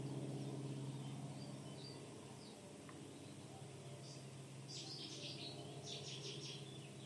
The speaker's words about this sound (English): I don't think I've ever heard so many cuckoos in my whole life in one place.